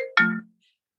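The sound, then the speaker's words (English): A short electronic phone ringtone sounds once, a bright tonal chime lasting about half a second before cutting to silence, with no one talking. “This is hooked up with my phone. And so did you just hear that? My phone's ringing.”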